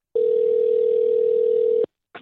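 A telephone dial tone as a call is placed: one steady, unbroken mid-pitched hum holding at even loudness for nearly two seconds, then cutting off abruptly, followed after a short gap by the brief start of another sound.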